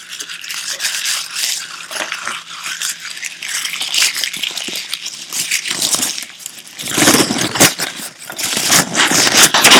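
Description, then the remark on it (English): Continuous crackling and crinkling of paper trash being crumpled and handled as it is cleared away, with bursts of louder scrunching near the end and no voices. “Let's get all this trash out of here.”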